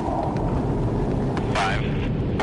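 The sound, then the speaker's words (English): A steady, loud jet roar of three F-18 fighter jets flying overhead at almost the speed of sound to launch Perdix drones, a broad continuous rumble, with a brief muffled voice-like burst partway through. “This time, the Perdix will be launched from three F-18 jet fighters, just as they would on a real battlefield.”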